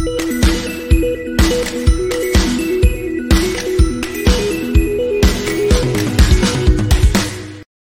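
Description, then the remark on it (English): A short, upbeat intro jingle made by a musician is played again, with a steady thumping beat, sustained melodic tones and bright cymbal-like crashes, then cuts off abruptly into silence after about eight seconds. “I didn't hear any jingle. Could you play it again? Is it possible to play it again?”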